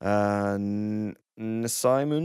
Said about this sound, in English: Yeah, voice has been reproduced as a vowel-like sound that is reminiscent of a sheep's bleat. I thought it was. They have done so by producing a 3D printed voice box based on Nezimun's voice track